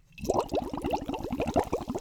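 Rapid gurgling bubbles as a grown man blows air through water, a steady bubbling burble lasting a couple of seconds, fairly loud with no talking.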